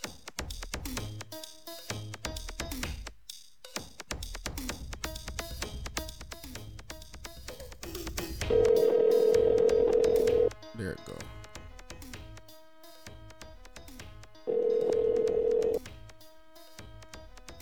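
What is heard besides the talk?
telephone ringing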